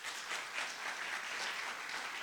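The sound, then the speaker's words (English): A church audience applauding two newly elected elders, a steady wash of many hands clapping that stays dense and even throughout, with no voices standing out. “Can we give a round of applause for those men?”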